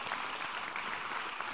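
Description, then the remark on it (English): An audience applauds steadily as a speaker is called to the stage at a speed debate, a dense wash of many hands clapping at an even, fairly strong level with no pauses and no voices rising above it. “Ross Ford, come to the stage. Give him a round of applause.”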